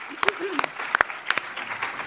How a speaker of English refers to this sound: So now you can clap for that.